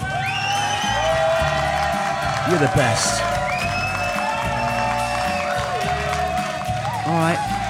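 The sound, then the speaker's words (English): A studio audience at a Radio Free Brooklyn show claps and cheers loudly and steadily, with high whoops and whistles rising through the dense roar, while a voice speaks briefly over the crowd. “Also, our fantastic studio audience, give yourself a round of applause.”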